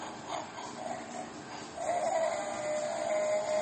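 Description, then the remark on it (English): An emergency Bigfoot toy collar plays a Bigfoot call: after a short hiss, a single wavering, bleat-like electronic cry begins and holds steady at a moderate pitch for nearly two seconds. “So anyway, if you're in the woods, you need one of these emergency Bigfoot collars.”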